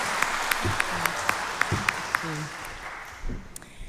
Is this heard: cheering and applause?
yes